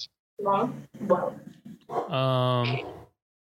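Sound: dog barking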